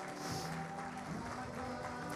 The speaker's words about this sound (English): Can we give the Lord a clap offering this morning? Come on. Wow.